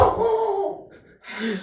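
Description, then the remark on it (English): A dog barks, two loud, drawn-out barks separated by a brief pause, with no talking alongside them. “Come here, our dog is saving our lives right now.”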